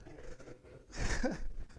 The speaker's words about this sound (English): I mean, look at me right now. Big and sweaty. Breathing hard.